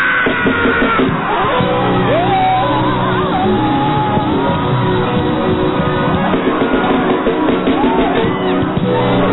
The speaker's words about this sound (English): Your friends, you shout too much. You shout too much. Is it your shouting?